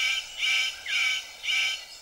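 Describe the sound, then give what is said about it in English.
A male superb bird of paradise gives three harsh, rasping mating calls to attract a female, in a steady rhythm, each lasting about half a second, fairly loud with no talking. “The superb bird of paradise calls to attract a female.”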